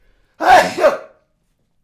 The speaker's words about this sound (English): I'm going to sneeze.